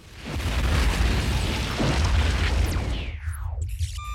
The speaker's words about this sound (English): The bomb was a dud, but the triggering charge blew out a 50-yard section of the pipe.